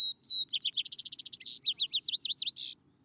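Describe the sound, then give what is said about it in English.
A sparrow sings: a high opening whistle, then a fast run of repeated chips, ending in a slower series of buzzy, slurred notes, clear and alone over faint background hiss. “The song of the sparrows, faith.”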